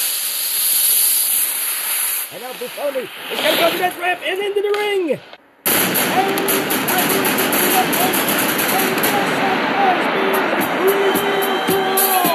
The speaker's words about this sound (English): Oh, and the fireworks have been set.